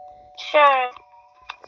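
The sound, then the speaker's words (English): A single bright, buzzy electronic doorbell tone rings out for about half a second as someone arrives at the door, over a faint steady hum, followed by a couple of soft clicks. “Oh, Layla is at the door.”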